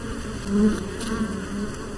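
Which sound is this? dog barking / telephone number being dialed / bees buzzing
bees buzzing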